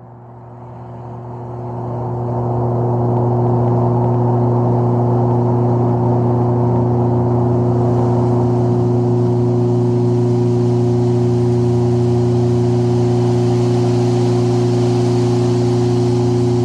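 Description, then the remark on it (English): Processed light bulb factory recording, with certain frequencies enhanced to bring out a buzzing energy evocative of light bulbs: a loud, steady electrical buzzing drone with layered low hum tones, swelling in over the first few seconds and then holding constant, with a noisy hiss above and no voices. “it was the kind of recording of a light bulb factory”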